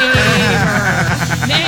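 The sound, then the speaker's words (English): A horse neighs loudly, one drawn-out whinny whose pitch wavers and trembles toward the end, with no talking over it. “What do you call a horse that lives next door? A neighbor.”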